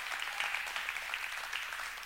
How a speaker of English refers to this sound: Come on together. Y'all give the Lord a hand clap for that.